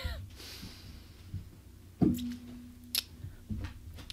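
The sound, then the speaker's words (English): Quiet rustling and crinkling as a wad of toilet paper is handled for use as a tissue, with a few sharper soft crackles spaced across a few seconds and no talking. “I'm going to pause for a minute and go get a tissue. All right. Got me some toilet paper.”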